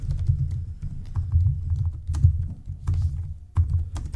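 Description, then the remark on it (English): Rapid typing on a computer keyboard, clear, with irregular bursts of clicky keystrokes and brief pauses between runs; no voices. “I like that you can hear me typing.”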